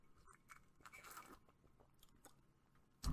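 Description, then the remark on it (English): Someone takes a sip of a drink, with soft slurping and wet mouth noises over a few seconds, ending in a sudden louder knock or swallow. “And I will take a sip on that.”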